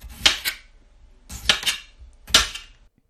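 Close-up knife chopping on a board, sharp cuts landing in three bursts of two or three quick strokes each, with short pauses between and no voices.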